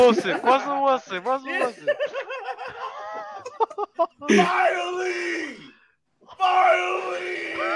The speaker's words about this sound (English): Hey, you doing all that screaming.